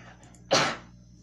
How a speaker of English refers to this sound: Bless you.